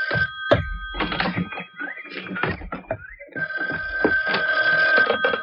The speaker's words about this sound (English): Oh, excuse me. There's the phone.